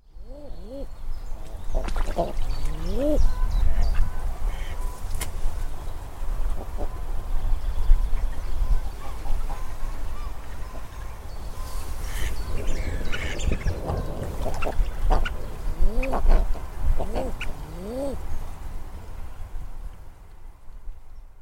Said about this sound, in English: We might just walk down and have a chat with the eider ducks in a minute. Yeah, they're really worth chatting to.